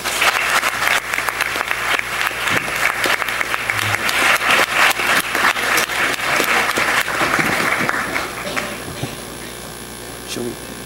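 Audience applause: a dense, crackling wash of many hands clapping at a steady, fairly loud level for around nine seconds before thinning and tapering off at the end.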